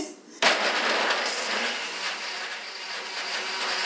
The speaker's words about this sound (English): So let me just blend this up here real quick. Cover your ears.